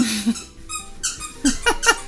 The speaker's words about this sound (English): you got your squeak toy? Great. Always during recording.